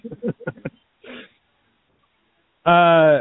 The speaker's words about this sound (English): almost starts coughing. I'll just be quiet and let it go. I'll let it pass.